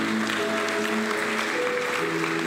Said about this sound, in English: One more round of applause for the mothers that are here.